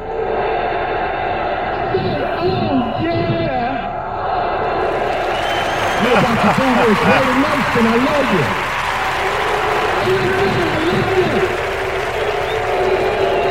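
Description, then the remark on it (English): A crowd of Raiders fans and other fans in Las Vegas claps and cheers in a steady, dense roar that swells midway, with voices shouting over the sustained applause throughout. “If you're ready for this clap, let me hear you say, yeah!”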